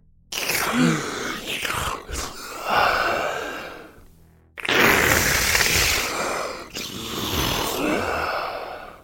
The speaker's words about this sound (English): You would say hello into the phone, and no one would respond. All you would hear is a strange breathing, followed by static.